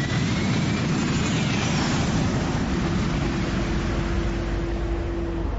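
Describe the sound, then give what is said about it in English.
A jet fighter engine roars steadily in flight as it climbs to 5,000 feet with a storm blowing in, a dense low rumble with a broad hiss above it and a thin whining tone sustained through the second half, no voices. “Well, jet fighters aren't famous for their creature comforts, Mr.”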